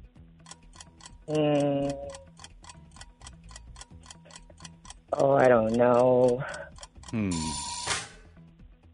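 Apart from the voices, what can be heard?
quiz timer ticking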